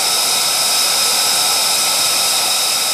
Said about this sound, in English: So the military aircraft are screaming off and like going to combat missions.